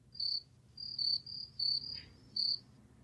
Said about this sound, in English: Crickets.